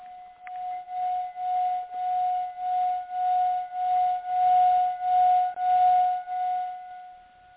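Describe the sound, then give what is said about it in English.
A singing bowl is played during a meditation, ringing with a sustained, steady mid-pitched hum and faint higher overtones, its loudness swelling and fading in a regular pulsing wobble throughout. No one speaks. “We're going to begin, and I'm going to play the singing bowl, and as I do, let the sound of this sacred instrument be your focus for a few moments.”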